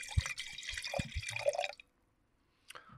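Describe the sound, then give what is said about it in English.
Wine splashes and gurgles into a glass for nearly two seconds, fairly loud, then stops; after a short silence a brief clink or trickle follows. It is a pour on top of an earlier pour. “That's a pour on top of a pour.”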